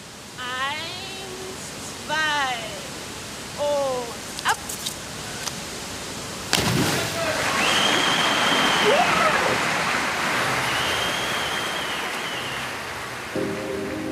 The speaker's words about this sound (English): We have a microphone at the bottom of the pool under the water. When the athlete goes under the water, we shift the perspective to just them and the underwater sound. You hear the bubbles.